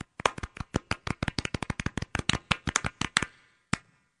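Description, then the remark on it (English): A quick run of soft, light hand claps, about two dozen in a steady rapid rhythm, then a pause and one final clap. The polite, muted patter of a golf clap, with no talking. “Golf clap.”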